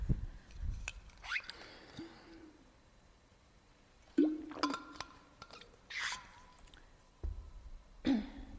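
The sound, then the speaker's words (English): Quiet drinking sounds of a speaker pausing a talk to drink water: a few wet sips and swallows with small liquid clicks and a soft thunk, spread unevenly over several seconds with nobody talking. “I'm just going to have some water first.”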